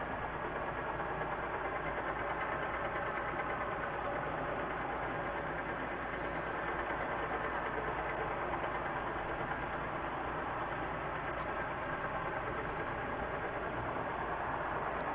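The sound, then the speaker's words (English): Steady, dense ship engine noise hums without a break, a droning, rumbling wash, from a recording of blue whales with ship sounds; no clear whale calls stand out and there are no voices. “Well, here's the next track that I have here is Blue Whales with some ship sounds.”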